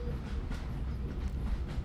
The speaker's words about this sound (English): I'm laying down the tracks. And any second now. Oh my God, it's a beautiful baby train.